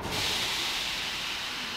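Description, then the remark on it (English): A loud, steady rushing roar fills an underground metro platform in Kharkiv, Ukraine, as a train passes through, a continuous hiss-like rumble with no voices. “Alongside the metro platform, there are now classrooms full of children, safe here from any explosions.”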